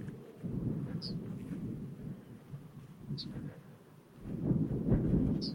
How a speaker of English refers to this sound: And a bird singing in this bush. It's a yellowhammer, I think.